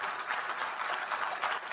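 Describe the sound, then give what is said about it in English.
Steady audience applause for a worker who keeps the campus clean, a dense crackle of many hands clapping at once, sustained at an even, moderate level with no voices on top. “Let's all give Jimmy a round of applause.”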